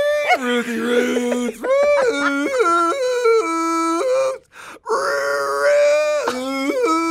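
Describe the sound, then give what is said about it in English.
A person loudly imitates a rooster-like crowing call: long, wavering, pitch-stepping wails in two drawn-out bursts separated by a short pause. “Sounds like a rooster.”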